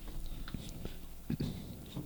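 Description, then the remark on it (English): Chewing of a burger with crunchy meat full of little crunched-up bits, with soft irregular crunches and mouth noises repeating over a couple of seconds, fairly quiet and with no talking. “Yeah, the meat is almost, like, crunchy in a way.”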